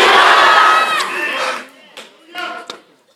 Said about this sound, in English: Somebody scream Jesus. Jesus. Say his name like he got power. Say Jesus.